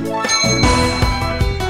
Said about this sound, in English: All right, when I ring the bell, you may go.